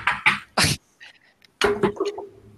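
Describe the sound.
A voice mimics knocking on wood with three quick, breathy percussive bursts, a short pause, then a longer run of voiced, throaty knock sounds.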